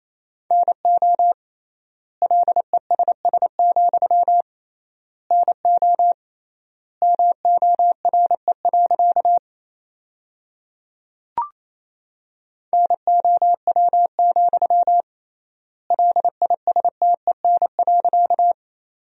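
Rapid Morse code at about 28 words per minute, sending practice sentences built from the top 400 words with triple word spacing: a steady mid-pitched tone keyed in quick dots and dashes, grouped into words with long gaps between, plus one brief click partway through.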